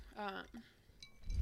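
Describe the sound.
A brief voice is followed by a single bright clink of tequila shot glasses touching in a toast, fairly light, with a short ringing tail and some low rumbling noise near the end.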